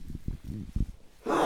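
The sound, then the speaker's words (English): A single loud, sudden sneeze bursts out at the very end, a harsh hissing blast following a stretch of low, murmuring vocal sounds. “Bless you.”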